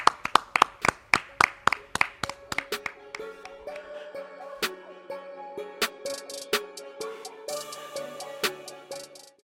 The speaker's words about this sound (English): Clap it up.